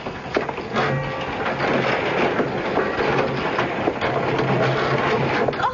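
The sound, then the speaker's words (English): An old door grinds open in one long, rough creak, a steady scraping groan lasting several seconds at fairly even loudness, with no voices. “Let me open the old door.”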